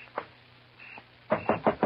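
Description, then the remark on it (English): Knocking on a front door: a soft single rap, then a pause, followed by four loud, evenly spaced knocks. No voices. “Somebody at the front door.”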